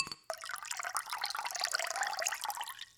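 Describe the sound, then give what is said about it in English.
A spicy cucumber and jalapeno margarita is poured into a glass in one steady, gurgling stream lasting a few seconds, its pitch rising as the glass fills. No one speaks. “Fact Checker is going to make us a cocktail real quick while we pause”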